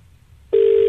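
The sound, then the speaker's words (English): A steady electronic telephone ringing tone of an outgoing call from a radio show to a listener starts abruptly after a brief quiet stretch and holds loud and even to the end, heard alone with no talking. “The thing is, he's ringing and he knows it's ringing.”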